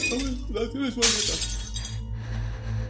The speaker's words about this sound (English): Then I heard what sounded like the glass window of my mom's room also shatter.